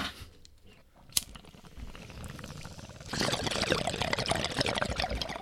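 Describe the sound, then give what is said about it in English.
Bong water bubbles and gurgles during a hit, a faint sputter at first that swells into steady, vigorous bubbling for the second half as someone draws hard through the bong. No voices are heard. “Oh, I think there's still some bubbles in it, but that was pretty awful the first couple hits.”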